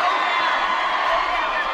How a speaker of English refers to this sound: Going to have to adjust this crowd mic. They are fired up more than normal tonight, folks. We'll turn that down just a little bit so it's not drowning me out.